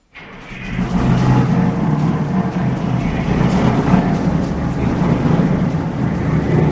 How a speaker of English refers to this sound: Right, we're ready now for launching. So the mechanic there will get the engines going and then we'll launch the boat down the slip.